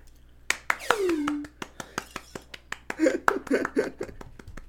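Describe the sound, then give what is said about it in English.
Steady, evenly spaced hand claps ring out sharp for several seconds, joined partway through by a falling vocal whoop and then excited voices and laughter over the clapping. “We very much clapped for that.”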